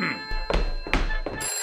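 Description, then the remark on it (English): A telephone bell rings loudly in a few quick bursts over a steady tonal hum, with no voices. “They hung up the phone.”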